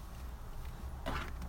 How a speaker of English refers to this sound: It's cold. Close the door.